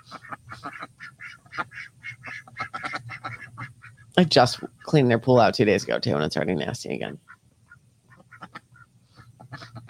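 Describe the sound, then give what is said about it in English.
Several ducks in a backyard pond break into a loud burst of raspy quacking for about three seconds, with a person talking quietly before and after the outburst. “Hello, duckies in the pond.”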